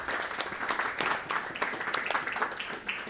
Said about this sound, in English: They do a fantastic job and they deserve a round of applause. So thank you.